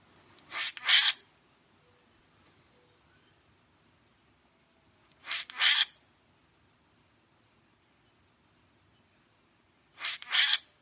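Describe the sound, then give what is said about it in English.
Three short, harsh, raspy bird calls from a common grackle, evenly spaced about every four and a half seconds, clear against an otherwise silent background. “So they have this really kind of harsh, loud noise that they make that is very short, very shallow.”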